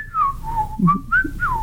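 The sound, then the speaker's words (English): Someone whistles a short, wavering melody, the clear tone sliding down, then back up in a few quick phrases with a slight breathy hiss underneath. “What, whistle?”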